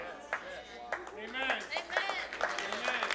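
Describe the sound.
A sparse, scattered round of audience clapping, a few claps spread unevenly over a few seconds, mixed with murmuring voices and reactions from a crowd.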